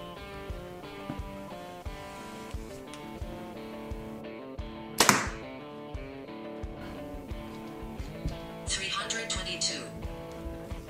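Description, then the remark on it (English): A single sharp snap of a compound bow set at a 29-inch draw releasing a 350-grain arrow at 322 feet per second cuts through steady background music, a brief, loud crack that stands out from the otherwise continuous musical bed. “So we're going to let it fly just basically on the setup they have. First arrow, 350 grains.”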